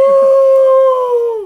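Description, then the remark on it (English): A voice imitates the whale-like moan a woman made at a salon when a spot on the back of her neck was pressed: one loud, sustained, tonal wail held steady for over a second, then sagging downward in pitch as it fades out, with no other sounds around it. “And so I hit this like spot like on the back of her neck that I guess like triggered her somehow, and she made this like whale noise. Like it was like I had like shot a whale with a harpoon.”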